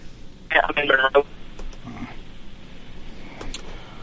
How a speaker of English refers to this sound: Well, looks like we're having a little bit of a problem with the cell phone towers down in middle.